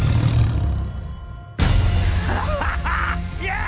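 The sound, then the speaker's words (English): Giant wolves growl and snarl as they run wild in a forest amid a loud, chaotic rumble, with a sudden crashing surge halfway through and rising, wavering cries as the beasts charge wildly. “Only a handful entered the forest. Giant wolves ran wild.”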